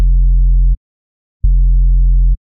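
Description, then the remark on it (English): Two long, deep synthesizer sub-bass notes, each lasting under a second with a brief silence between, loud and steady with a smooth humming low end and no other sounds. “If you don't know what a sub is, I'll play an example of it right here.”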